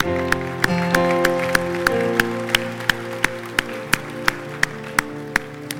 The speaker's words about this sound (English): Let's just give the Holy Spirit a clap. Hallelujah.